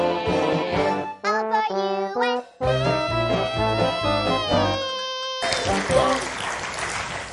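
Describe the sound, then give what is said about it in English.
A sung melody with accompaniment ends, then a small group claps for about two seconds, a thin, scattered patter of applause at moderate volume. “I don't know what to make of the little clap there.”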